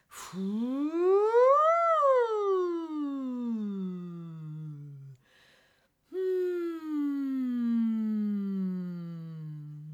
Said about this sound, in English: How about some hum sighs that let you feel your voice as it slides around?